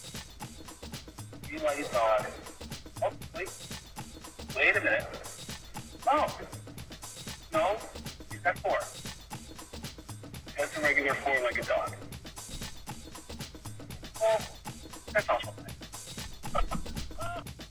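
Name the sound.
dog barking and yipping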